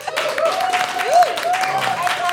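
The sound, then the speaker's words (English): An audience breaks into a steady round of applause at the end of the nerd quotient round, dense overlapping claps at an even level for a couple of seconds, with a faint thin tone sliding underneath. “A round of applause for that nerd so far.”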